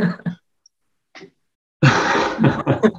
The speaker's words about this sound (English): Just make this a 24-hour yawning episode.